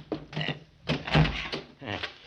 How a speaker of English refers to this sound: Can you get that door open? Oh, it's pretty well banged up. I think I can handle it.